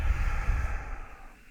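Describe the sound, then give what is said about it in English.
A slow belly breath, an airy rush of air drawn in through the nose and released through the mouth, gradually fading out. No one speaks. “So we're breathing in through the nose and out through the mouth.”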